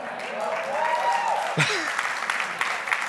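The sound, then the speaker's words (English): Audience applause at the mention of a cafe, a steady dense patter of clapping for about three seconds, with a voice briefly audible over it. “know how to take that, that you guys applaud the cafe, but the heart for generosity, I don't know.”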